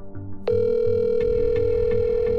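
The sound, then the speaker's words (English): A steady electronic ringing tone of an outgoing phone call to a man's number starts abruptly after a half-second of low background noise and holds unbroken to the end, moderately loud, with a few faint clicks underneath. “so I called him, hoping his number still worked.”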